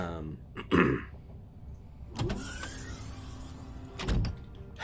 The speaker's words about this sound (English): As you have been in this room, same individual comes back. The door opens.